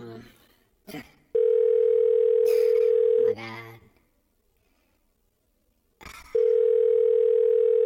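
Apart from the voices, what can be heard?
phone call ringback tone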